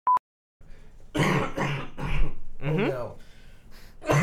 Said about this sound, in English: All the coughs will stay in during the commentary.